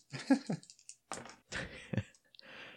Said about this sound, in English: I've been rolling dice again. It sounds like you've relapsed. That's what that sounded like.